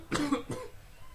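A short cough: two quick bursts in succession, the second softer, with no talking around them.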